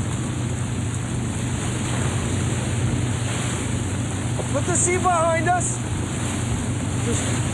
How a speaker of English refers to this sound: Storm's easing up, boys, so we just look for the lights on the shore to guide us in.